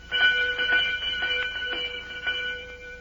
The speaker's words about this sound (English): Sure I rings the bell.